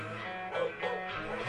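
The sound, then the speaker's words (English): A small dog named Mahler gives two quick, high yips about a third of a second apart, fairly faint and set against a steady, humming tonal background. “Little dog, you know it's Mahler.”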